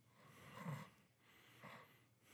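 Heavy, rasping breaths into the microphone: a louder exhale followed by a second, slightly softer one about a second later, with no talking.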